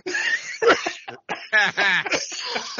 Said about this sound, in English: He made me cough.